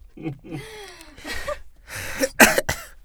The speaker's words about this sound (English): He's coughing.